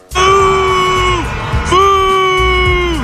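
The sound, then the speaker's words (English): A stadium crowd in Boston, New England, booing loudly in two long, sustained waves, each swelling and then sagging in pitch before the next begins, over a dense roar of many voices, as Taylor Swift is shown on the Jumbotron at the game. “She was booed by the meatballs in Boston.”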